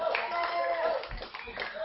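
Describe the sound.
A crowd applauds steadily throughout for two participants after an on-stage contest, a dense wash of many hands clapping at once, sustained, with faint voices mixed into the noise.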